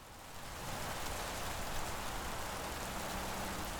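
Heavy rain pours down steadily just after a thunderclap, a dense, even hiss that swells in the first half second and then holds at a constant roar with no voices.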